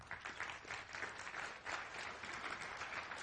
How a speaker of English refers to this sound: You already clapped, so thank you very much.